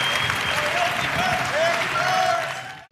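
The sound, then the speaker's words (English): Sustained audience applause for a musician at the first NFTLA event, a dense, steady wash of clapping from many hands at a loud, even level, with faint tonal whistles or cheers on top before it cuts off abruptly. “Big round of applause for … for being there and sharing this gold with all of you.”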